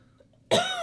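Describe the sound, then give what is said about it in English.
A woman gives a sudden, harsh cough after a moment of near silence, loud and raspy with a strained, throaty edge that carries to the end. “Hey, she's coughing up some of that jism.”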